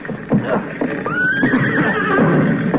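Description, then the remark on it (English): A horse named Jack whinnies loudly for about a second while being led out through thick smoke, a shrill, wavering call that rises and then trails downward, over a busy background of shuffling and low rumbling noise. “I'm trying to get the last horse out.”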